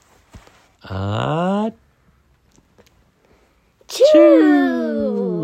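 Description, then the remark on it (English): A voice acts out a theatrical sneeze while reading a story from a book: a drawn-out rising "ahh" followed after a pause by a loud, breathy burst that trails off in a wavering vocal tone, a sneeze that sends Dr. Cat flying in the air. “Now cats make me sneeze too.”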